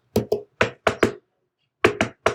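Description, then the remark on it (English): Sharp knocks tapped out in a syncopated rhythm on a hard surface, imitating the Terminator 2 theme music: five quick hits, a short pause, then three more. No voices. “You know, the Terminator 2 music.”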